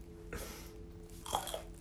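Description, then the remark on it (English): Two loud crunches of someone biting into a crisp, spicy snack, spaced about a second apart, with chewing noise between and no talking. “That crunch.”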